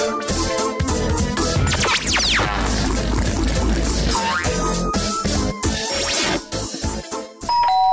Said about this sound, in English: Professor, there's someone at the door. There's something on the floor. No, there isn't. Can't you hear? It's the doorbell.